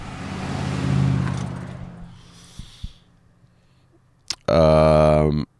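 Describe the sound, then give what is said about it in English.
A van rumbles past at a cemetery, its broad engine and road noise swelling and then fading within about two seconds. A few faint clicks follow, then a short, loud tonal burst near the end. “Oh, here comes a fucking van again.”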